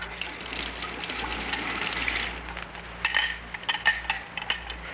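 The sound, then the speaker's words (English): Water is poured into a glass in a steady gush for about three seconds, followed by a few light glassy clinks and taps, over a low background hum. “Water or soda, pussycat?”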